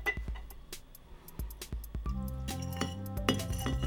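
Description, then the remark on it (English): Pond water with pond scum, scooped from the bottom layer of a local pond and holding little critters, being poured carefully into a glass container, with a run of sharp, irregular clinks and taps against the glass over a low, steady wash of sound. No one speaks. “Pour this in carefully.”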